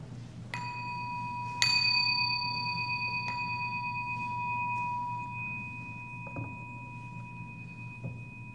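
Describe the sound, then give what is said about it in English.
A meditation bell is struck three times in slow succession at the start of a guided meditation, each clear chime ringing out and blending into a long, sustained shimmer over a low steady hum. “It will begin with three chimes of the bell.”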